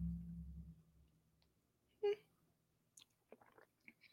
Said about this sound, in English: I don't have no tea this morning, but I'm sipping my water real slow.